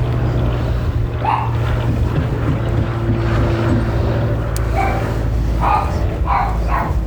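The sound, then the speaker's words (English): A dog, set off by a plane going overhead, barks several times in short, scattered bursts over the loud, steady droning rumble of the aircraft passing overhead, with some wind buffeting the microphone. “Do you know what set off the dog? What? A plane going overhead.”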